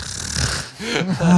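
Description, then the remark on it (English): A person imitates snoring with their voice, a rough, nasal rattle rising and falling over about a second and a half, fairly loud. “Snores. Snoring.”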